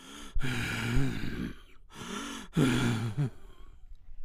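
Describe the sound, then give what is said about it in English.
Labored breathing with a rough, rattling edge: a few long, strained breaths drawn in and pushed out, partly voiced like a groan, with brief pauses between them. “Long, rattling breaths sucked in from the world, but never enough.”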